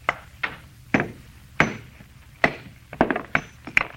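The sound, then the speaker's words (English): A hammer strikes stone repeatedly in sharp, ringing blows, about ten impacts at uneven intervals, some landing in quick pairs, close and fairly loud with no talking. “All I'm going to do is try and break it along this fissure.”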